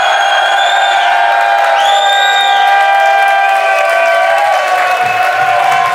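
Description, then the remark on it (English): A large live audience at Rice University in Houston cheers loudly and continuously, with sustained whoops and yells rising over a dense roar of voices and scattered clapping throughout. “Yeah! Now that's a crowd.”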